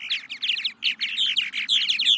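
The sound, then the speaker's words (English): A dense, continuous stream of bubbly, gurgling chirps from purple martins, migratory birds and the largest swallow in North America, many birds calling over one another with rapid, overlapping warbles and no pauses. “Purple martins. They're migratory birds, and in the spring and the summer, they can be found pretty much anywhere east of the Rockies.”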